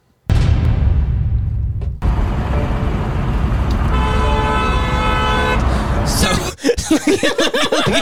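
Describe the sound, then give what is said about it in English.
A woman honks a car horn loudly in long, sustained blasts amid busy road traffic noise, with a steady harmonic tone, trying to get the attention of Gary Busey, who has just crashed into her on the road; voices talk over it near the end. “And she's honking at him, trying to get his attention.”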